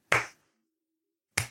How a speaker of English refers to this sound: No, that sounds like a hopeful slow clap. All right. No, you sound like you're clapping along with a song that no one can hear.